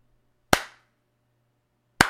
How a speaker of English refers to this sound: Before we jump into this, I'm going to clap. So this is like, if you need to edit and you want to go straight to the part we talked about this.